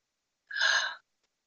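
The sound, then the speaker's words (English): A single breathy yawn, fairly soft, a brief airy rush of breath lasting about half a second, then silence. “Excuse me, yawn if you have to.”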